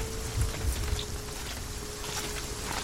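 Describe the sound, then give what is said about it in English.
Steady rain hisses evenly throughout, a dense continuous patter with a low rumble underneath and a faint constant hum, no voices present. “Look for tracks before the rain washes them away.”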